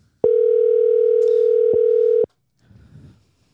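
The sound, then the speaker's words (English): A telephone ringing tone on an outgoing call to a guest: one steady, loud electronic tone holds for about two seconds, then stops, followed by a faint low murmur. “They better answer the phone.”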